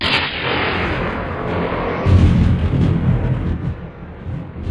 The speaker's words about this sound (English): Thunder rolling in between gurgles and groans.